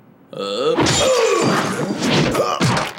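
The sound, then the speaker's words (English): A glass bottle smashes loudly over a man's eyes as the character Jet gathers clues, a sharp crash and shatter followed by a few seconds of dense, noisy breaking debris, with the man's pained cry mixed in. “Elsewhere, Jet is gathering clues by smashing a bottle over a man's eyes.”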